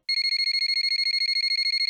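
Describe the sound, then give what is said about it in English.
A telephone rings with a rapid, continuous electronic trill, bright, repeating without pause for the whole moment and standing alone with no voices. “My eyes shoot open with a startled breath as the phone rings.”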